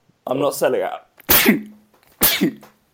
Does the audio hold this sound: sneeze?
yes